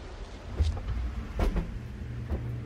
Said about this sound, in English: This is the insectary. That humming is from an environmental growth chamber.